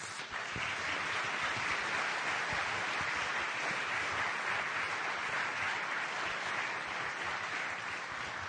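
A steady burst of audience applause, dense and loud, with many hands clapping continuously for several seconds without any voices standing out.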